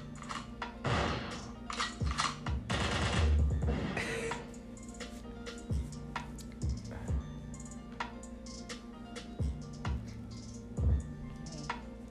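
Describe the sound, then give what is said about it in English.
A series of sharp, punchy bangs like gunshot sound effects, fired in uneven bursts with a dense flurry early on, then scattered single shots over a low steady hum. “So give some gunshots to Diddy.”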